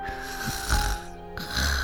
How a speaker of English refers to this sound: Once upon a time, there was a fat pig. He loved to snore.